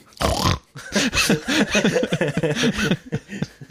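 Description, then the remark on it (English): A voice imitates Peppa Pig eating, making a quick run of bouncy oinks and snorts for several seconds, with a few sharp breathy bursts at the start and end. “That's Peppa. That's for Peppa, because Peppa loves to eat.”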